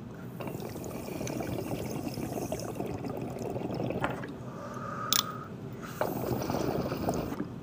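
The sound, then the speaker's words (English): Steady crackling sizzle with a watery bubbling texture from a dab rig during a dab runs moderately loud throughout, with a brief sharp click and a faint whistling tone around the middle. “Did you guys hear that sizzling?”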